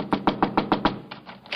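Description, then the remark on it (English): A quick, steady run of firm knocks on the door of a place with a room for rent, about six sharp raps, then a few softer, more hesitant taps, with no voices. “As I went out to see this place, I walked up and knocked on the door and...”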